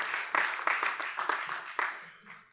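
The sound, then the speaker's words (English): A crowd claps together in a dense, crackling burst of applause with a few sharper claps standing out, then the clapping thins and fades away near the end. “I appreciate your hand clap, but he deserves all the glory, all the honor, all the praise, all the majesty.”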